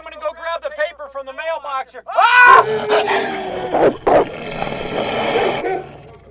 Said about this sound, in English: Grown man being attacked by hungry dogs.